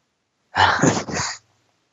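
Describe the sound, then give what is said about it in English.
A harsh, rasping throat clearing lasting about a second, in two quick gravelly bursts, with no talking around it. “Well, and that's the thing, like, you know, a lot of people, hang on, I got to clear my throat again.”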